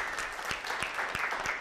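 An audience breaks into steady applause for an audience member coming up to share what his business does, a dense wash of many hands clapping at an even level, with a few sharper individual claps standing out at a regular pace.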